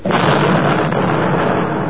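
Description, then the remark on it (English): A V-1 flying bomb explosion in London in 1944, the bomb dropping in the next block after its engine stopped: a loud, sustained roar of crackling, rumbling noise that starts abruptly and holds steady for about two seconds, with no voices. “Look out, here comes another V-1.”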